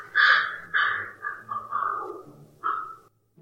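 A young bird gives a series of about five or six short, nasal honking calls, harsh and mid-pitched, coming in uneven bursts with brief gaps between them and no talking.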